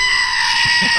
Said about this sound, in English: Sickly goat.